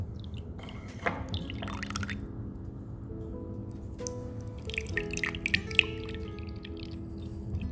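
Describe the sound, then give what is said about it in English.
Jasmine green tea from a second brew is poured from a teapot with a built-in filter into cups, a steady trickle with splashes and drips whose pitch rises faintly as the cups fill. No one speaks. “Our teapot has a built-in filter, so we don't even need to use the filter. Okay, Win, can you help mommy to pour to the cups?”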